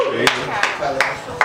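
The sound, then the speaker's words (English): Four sharp handclaps land at a steady, unhurried pace, distinct, over a continuous murmur of voices talking underneath, as an audience is asked for a round of applause for guests called up to talk about love. “Big round of applause, ladies and gentlemen, for love.”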